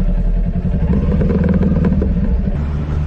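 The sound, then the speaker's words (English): A motorcycle engine revs loudly while the rider is stopped at a red light, its throaty rumble rising and falling with rattling clatter, steady throughout with no voices. “The reason why I pulled you over is because you're revving your engine like a jerk.”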